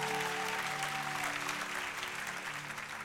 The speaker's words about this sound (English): People in additional seating. So everybody who's in the lobby right now, love you so much. Give them a big old round of applause too.